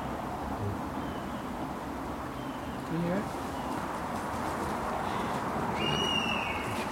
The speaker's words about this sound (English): Something else over there, isn't there? Yeah, there's another bird calling. Maybe a young buzzard. Oh, maybe that's what it is. Yeah, it's a bit more insistent.